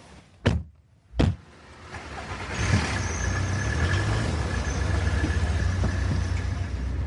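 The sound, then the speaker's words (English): Two sharp door thuds, then the steady low rumble and road hiss of a car driving on the A505 near Duxford, heard from the back seat inside the cabin, building and holding at a constant level with no one talking. “we're on the A505 near Duxford, and Dave's driving his car, I'm sat in the back”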